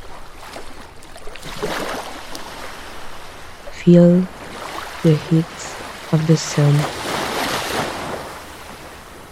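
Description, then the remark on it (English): Ocean waves wash steadily onto a shore in a continuous, rushing surf, while a calm voice speaks a few soft words over the water partway through. “Just hear the sound of the waves.”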